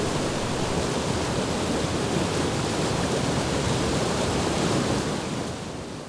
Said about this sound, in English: The more subtle sound of water splashing off those rocks. Can you hear it?